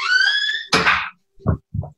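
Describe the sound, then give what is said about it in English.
A door is swung shut: a high creaking squeal, then a sharp bang as it closes, followed by two softer, dull thumps a moment later. “We can close the door? Thank you. All the way.”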